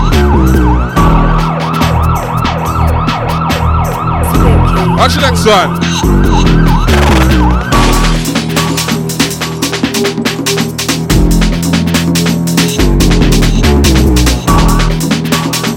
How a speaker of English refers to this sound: Time to let them sirens fly, boy.